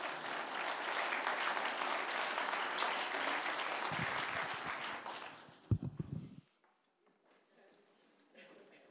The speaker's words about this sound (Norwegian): Så vi gir han en skikkelig god klapp. Halleluja.